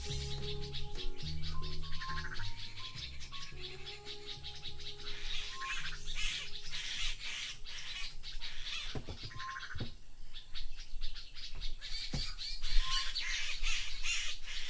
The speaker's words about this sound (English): And it's the concatenation, thank you, of bird call, bird song, early in the morning, the Dawn Chorus. Here's an example from Botswana.